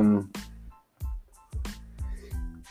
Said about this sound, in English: Bless you. Bless you.